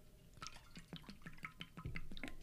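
Someone sips water, with a quick series of small wet slurps and gulps repeating in an uneven rhythm. Nobody speaks.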